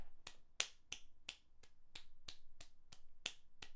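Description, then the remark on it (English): One person claps alone at a steady, even pace, roughly eleven crisp, sharp claps, with no voices or other sounds around them, voting in a pumpkin contest. “And if you think Tim's pumpkin's the winner, clap for him.”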